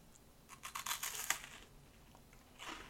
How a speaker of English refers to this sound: Oh, okay. So that's a packet of something crunchy. So like packet of crisps of some description.